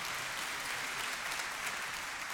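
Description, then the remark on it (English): Steady, dense applause from an audience, many hands clapping together at an even loudness throughout, with no voices standing out above it. “No one knows to clap.”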